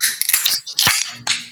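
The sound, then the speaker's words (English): A can of Clutch beer being cracked open: sharp metallic clicks and a pop, followed by a bright, steady hiss of fizzing carbonation, with no voices over it. “So, glass in hand, can in the other hand, let's open her up.”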